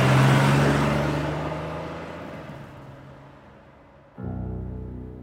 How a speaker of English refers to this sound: The car swings around the front of the airport, driven by one of his guys.